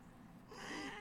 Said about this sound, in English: Waiting for the blood-curdling meow from Jasmine.